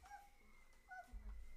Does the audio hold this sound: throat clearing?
no